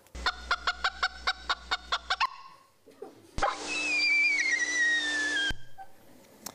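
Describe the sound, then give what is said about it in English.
Bird alarm calls: a run of about ten quick, evenly spaced clucking notes, then after a short pause a long, high whistle that slowly falls in pitch over a rough hiss. “Oddly, this paper has not made it into the textbooks and is not as widely known, maybe because they only have two different predator alarm calls rather than three.”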